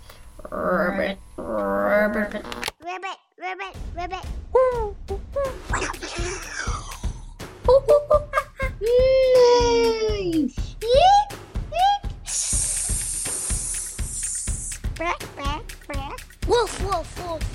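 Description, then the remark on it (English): A child's voice imitates a frog, making a string of croaking noises repeated in quick uneven bursts with a few higher squeaky calls and a breathy hiss near the end. “And we're going to show you how to impersonate a frog.”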